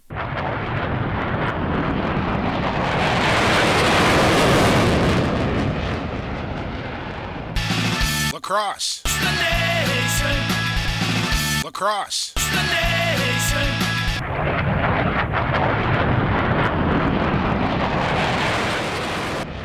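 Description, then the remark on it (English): A loud, steady private jet engine roar, a G6 landing at Pitt Meadows Airport in Maple Ridge, British Columbia, fills the first several seconds, breaks off for a stretch of tonal, musical sound with sweeping pitches, then the heavy roar returns to the end. “Landing the G6 in the Pitt Meadows Airport, Lacrosse the Nation takes us to Maple Ridge, British Columbia.”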